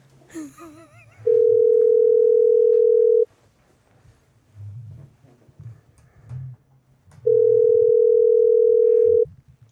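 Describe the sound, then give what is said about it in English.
A loud telephone dial tone while placing a call sounds twice as long steady beeps, each about two seconds, separated by a pause filled with faint low background rumble. “It doesn't make any sense why I would call them, put you on the phone.”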